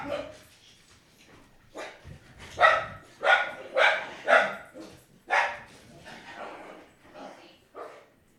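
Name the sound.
dogs barking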